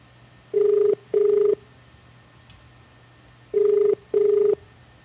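A phone line ringback tone from a call being placed rings in two pairs of short steady buzzes, a pause between each pair, heard clearly over a faint background hum with no talking.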